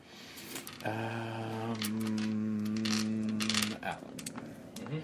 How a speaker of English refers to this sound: 1 dice plus 2. You have to roll a 6, basically, or else you're going to miss.